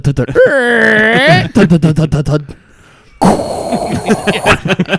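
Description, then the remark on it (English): A voice imitates creaky floorboards in a home with a drawn-out, wavering groan that bends in pitch, followed by choppy vocal noises, a brief quiet pause, then a burst of rough, breathy noise. “Our floorboards, so a couple of them are creaky, so you hear like,”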